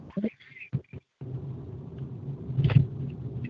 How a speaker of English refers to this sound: And right now I'm in my car. I am hoping you guys aren't hearing. I'm in my car, I'm driving, and I don't know if there's any background noise